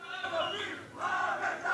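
A large crowd of scores, maybe hundreds, of Jewish residents chants together at a street demonstration at a college in the city of Netanya, Israel, waving Israeli flags and shouting "Death for Arabs", with police on the scene. Many voices shout in unison with rising and falling bursts, loud and dense.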